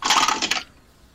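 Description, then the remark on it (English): Two dice rattle and clatter across a tabletop for an attack roll in a tabletop game, a quick burst lasting about half a second, then settle into near silence. “I roll 2 dice again?”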